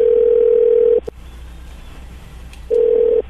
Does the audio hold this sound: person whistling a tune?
no